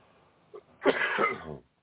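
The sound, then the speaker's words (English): A single loud, harsh cough bursts out after a brief sharp intake of breath, lasting under a second before fading into silence. “I'm still coughing.”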